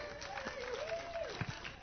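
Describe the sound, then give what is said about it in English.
A church audience claps steadily in a dense, uneven patter, with a sustained voice-like tone drifting over the applause and a few louder claps near the end. “And you all clapping?”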